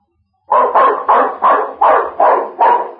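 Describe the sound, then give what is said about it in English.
A dog barks loudly and rapidly, about eight sharp barks in a steady, insistent rhythm, with no talking. “The old gentleman tried to trot along to the drugstore, but suddenly a cat came along and off went the dog down the block and around the corner.”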